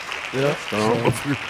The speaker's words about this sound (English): And claps.